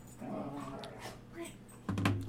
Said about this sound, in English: You can't have dogs fighting anywhere, and now here they are, and they're just making noise. Because Sadie's trying to hump, you know, the other dog.